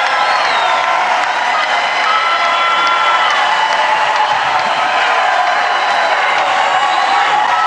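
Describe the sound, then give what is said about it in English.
A large crowd roars and chants together, a dense, loud wall of voices that holds steady for several seconds, with whoops and scattered clapping mixed in and no single speaker heard, at Tim Scott's campaign rally announcing his run for President of the United States. “Here comes the chanting.”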